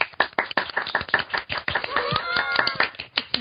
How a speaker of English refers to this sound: Why don't you, hey, why don't you just give a real clap? Why you gotta give the fake shit? Ready? Golf one, clap. Two, three.